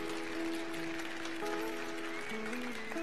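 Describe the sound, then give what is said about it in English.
A steady wash of audience applause, dense and even throughout, with sustained keyboard tones holding and shifting pitch underneath. No one speaks. “Since through the law, yeah, you can clap. That's something we should celebrate to.”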